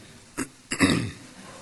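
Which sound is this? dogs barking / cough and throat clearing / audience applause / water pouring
cough and throat clearing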